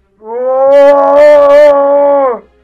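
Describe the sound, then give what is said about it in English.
A single loud roar from the Wookiee Chewie inside the Millennium Falcon at light speed, a long, steady, throaty howl with a rough, growling edge, held for about two seconds before trailing off, with no one speaking. “Chewie roars.”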